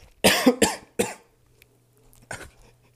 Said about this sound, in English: But it goes like, so I'm going to cough.